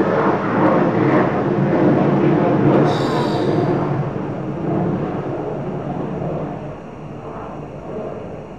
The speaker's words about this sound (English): So, there was a plane passing by.